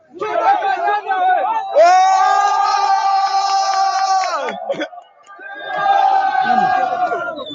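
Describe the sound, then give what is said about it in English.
A crowd of people cheering, shouting excitedly and laughing, with one long, loud sustained yell rising above the noise midway before the mixed voices of the group return. “Listen to people cheering and like laughing too.”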